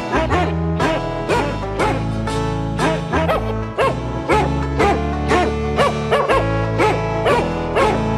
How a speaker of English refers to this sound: So I don't have a chorus at home of dogs to sing that for us, but it is a recording. I don't know if it's real dogs. I doubt it.